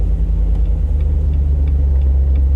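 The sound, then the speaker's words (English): A Jeep engine accelerating hard, a loud, continuous low rumbling drone with a steady throaty growl throughout and no voices. “Tell me you're gonna rump on it. Hopefully it doesn't just fall over when we accelerate.”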